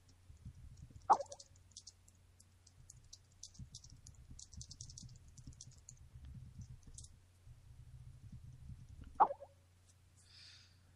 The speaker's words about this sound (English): Typing away.